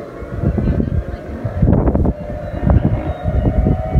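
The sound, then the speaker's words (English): Helicopters flying over in Alaska during a tsunami warning: a loud, continuous low rumble with rough, pulsing chop that swells and eases over a few seconds, with a faint steady whine running underneath. “Helicopters flying over.”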